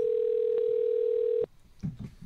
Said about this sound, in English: You're just going to leave it ringing while we continue doing the show?